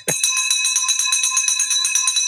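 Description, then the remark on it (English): A victory bell rings rapidly and continuously, a bright metallic clanging with steady rhythmic strikes and ringing overtones, loud, with no talking over it. “There's the victory bell”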